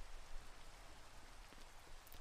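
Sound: steady rain falling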